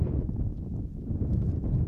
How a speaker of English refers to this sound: At times, he has to hold on to his wide-brim hat to prevent it from flying away in a gust of wind.